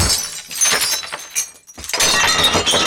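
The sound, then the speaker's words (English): Soldiers smash dishes in an inn: a loud, continuous clatter of breaking crockery, a brief pause, then another sustained burst of crashing shards. No voices. “First, they smashed all the dishes.”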